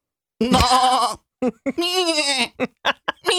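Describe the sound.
A human voice imitates sheep and goat bleating: two long, wavering bleats followed by several short, clipped bleats in quick succession, loud, with no other sounds around them.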